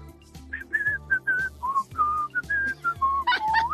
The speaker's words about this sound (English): Do you whistle the same tune that he would whistle?